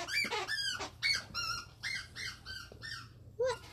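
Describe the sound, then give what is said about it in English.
A dog squeaks and whines in a rapid run of about eight short, high-pitched bursts, fairly loud, with a faint low hum beneath. “You're squeaking too much.”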